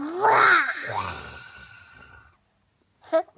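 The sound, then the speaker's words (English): A child's voice imitates a tiger's roar: a loud, strained, wavering growl that fades over a couple of seconds, then a brief pause and one short, sharp vocal burst. “And show God, what does a tiger say?”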